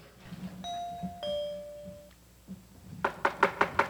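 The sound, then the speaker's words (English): A two-tone doorbell chime rings out, then after a pause someone raps on a door about five times in quick, even succession, fairly loud, knocking too high on the door. “You're knocking too high.”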